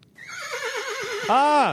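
A single loud, clear horse whinny with a quavering, trembling pitch that rises into a brief arched squeal before cutting off.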